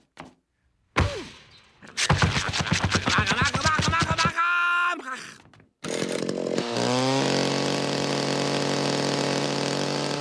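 A chainsaw sputters to life with a few sharp pulls, then revs into a loud, steady roar as it cuts through and obliterates the mattress in Duke's bedroom. No one speaks.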